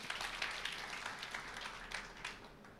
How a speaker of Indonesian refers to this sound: Tepuk tangan buat Tuhan, saudara.